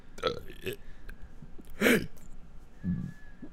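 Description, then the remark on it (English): Several loud burps in a row: a couple of short ones, a big raspy belch in the middle, then a lower rumbling one, with no words spoken. “Can you speak about it in burps?”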